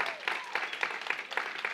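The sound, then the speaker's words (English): A large group applauds the tech team, producing a dense, steady wash of clapping with soft rhythmic swells, for a couple of seconds. “How about our tech team? Can you give them a round of applause?”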